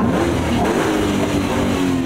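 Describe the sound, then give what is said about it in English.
A car engine revs loudly and steadily, its deep harmonic drone rising and falling slightly over a couple of seconds, with no voices. “Who do you think sits in this car?”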